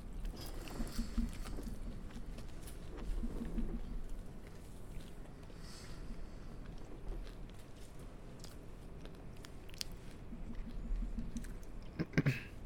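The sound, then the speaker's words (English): Loud, crunchy chewing of pizza crust, with dense crackling bites and crunches repeating steadily throughout, with no talking. “The crunch is actually crazy.”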